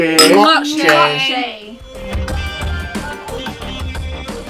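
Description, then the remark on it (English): Bright, ringing clinks of glassware knock together during a toast at the start, followed by softer clattering and rustling of drinks and tableware with a faint murmur of voices. “Right, we're back. Let's do this. Clink.”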